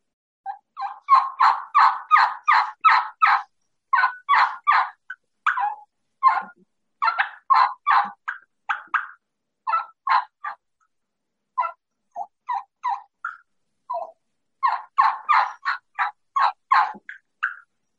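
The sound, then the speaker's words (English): A plain turkey hen yelp made on a game call, a long run of clear, evenly spaced raspy notes in several bursts with brief pauses, loud with no talking. “And then that's just a plain hen yelp”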